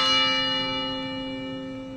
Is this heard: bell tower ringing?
yes